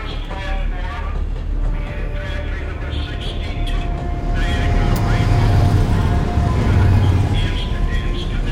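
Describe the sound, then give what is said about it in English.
Steady, loud rumble inside a moving train at night, a continuous low roar with faint rattles and a thin whine, swelling slightly halfway through, with faint indistinct voices underneath. “It's dark outside, and there's something about being alone on a train at night that's always felt a little foreboding to me.”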